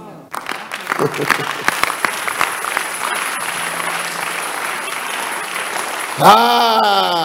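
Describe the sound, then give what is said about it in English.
A crowd claps steadily for about six seconds, a dense, even patter of many hands at a constant loudness, before a single loud voice cuts in over the fading applause. “All those who are trying to do it crooked way, they are not clapping.”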